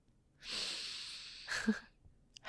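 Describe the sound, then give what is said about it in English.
A long inhale of airy, breathy noise lasting about a second, followed by a shorter exhale, with another breath starting at the end. No speech. “Take a deep breath.”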